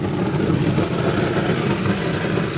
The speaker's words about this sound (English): Then it gets blown through a network of pipes. So if you look up there, he's evacuating the nougat from the blender.